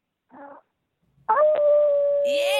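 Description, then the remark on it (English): A phone-in caller in Georgia does a long, loud wolf-howl imitation that holds a steady pitch and swoops upward near the end, preceded by a brief, quieter vocal sound. “Do you want to give us a howl before you go?”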